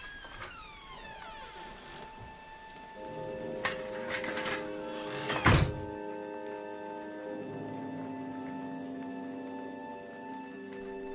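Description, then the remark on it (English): A rusty metallic latch rattles and clunks, followed by a heavier clack as an unfastened door swings open with a drawn-out, groaning creak, in the rain. Moderately loud, with no voices. “I try the rusty latch and find the door unfastened.”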